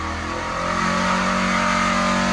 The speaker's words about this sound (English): Is that from where the exhaust stacks are for the dyno? Sure is. It makes that much noise out there, or are you right up against the... Dude, 5,500 RPM on a Duramax. Damn. Oh, yeah. Sounds rad. Yeah. Sounds really rad.